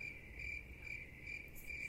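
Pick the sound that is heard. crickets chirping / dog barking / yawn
crickets chirping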